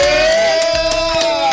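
A burst of cheering from a small studio audience greeting actress Jasmine Guy, with a long, high sustained whoop riding over scattered claps. It is loud and continuous for the whole moment, and no speech is heard.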